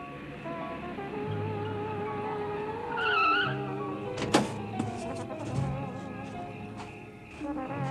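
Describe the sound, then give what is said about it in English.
A car engine rumbles steadily, with a brief high squeal of tires or brakes midway and a sharp thump just after, as the vehicle pulls in. No one speaks. “It was only about 30 minutes later, actually, that I heard another car.”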